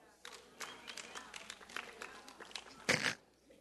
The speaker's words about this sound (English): That was a wonderful golf clap.